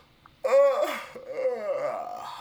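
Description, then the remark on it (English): A single loud, drawn-out yawn with a voiced groan that swells and then trails off over about two seconds. No other sounds around it. “It was just I had to yawn because I was so fucking bored by this story.”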